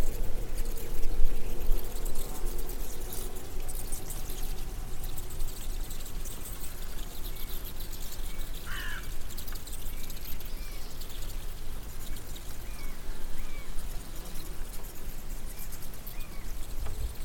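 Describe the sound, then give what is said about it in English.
A colony of bats in a house squeaking and chattering during the day, a dense, continuous flurry of tiny high-pitched squeaks and clicks over a steady hiss, with no talking. “And eventually traced the noise down to a colony of bats squeaking during the day, just chattering to themselves.”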